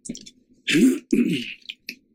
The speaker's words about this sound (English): Making me need to clear my throat.